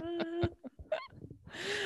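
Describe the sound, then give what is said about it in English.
A person mimics a duck, letting out a few nasal, honking quacks in quick succession, fairly loud, followed by a breathy rush of noise. “Quack, quack, quack.”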